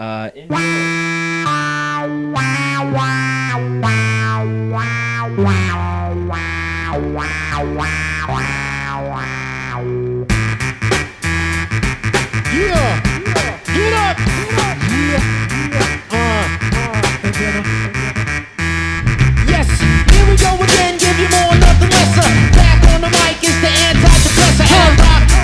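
A hip-hop song from a new album plays: a brief intro of sustained synth chords gives way to a loud, punchy drum beat with rapped vocals riding over dense, buzzing production.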